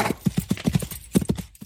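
horse hooves clip-clopping

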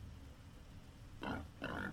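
pigs grunting

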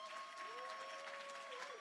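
audience round of applause

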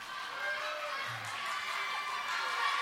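audience clapping and cheering

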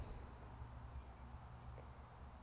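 frog calling

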